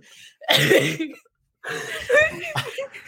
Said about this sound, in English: You guys just take a bong rip over there? What's going on? Yeah. Cough that shit out.